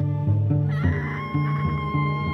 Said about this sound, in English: Oh, stupid birds, that's all it was. Yes, that's all it was.